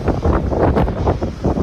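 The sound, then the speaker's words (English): Loud, roaring tornado winds buffet the microphone in a steady, gusting rumble that surges and dips throughout, overpowering, with no voices. The tornado strikes Fort Lauderdale on a Sunday, damaging homes and boats. “This was Sunday in Fort Lauderdale, where a tornado damaged homes and boats.”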